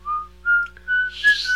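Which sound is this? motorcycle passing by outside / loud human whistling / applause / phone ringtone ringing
loud human whistling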